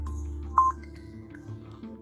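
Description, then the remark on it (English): An alarm goes off as a single short, mid-pitched electronic beep that stands out clearly above a steady low hum, with no one speaking. “There's the alarm.”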